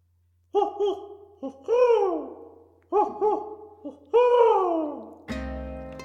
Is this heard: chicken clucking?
no